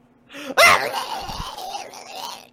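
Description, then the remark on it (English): A strained, wordless yell from a transformed creature bursts out abruptly and holds for about two seconds, rough and wavering like a pained wail, fairly loud with no intelligible words. “So in case you at home don't realize what just happens, the what it actually says is yelling, incomprehensible.”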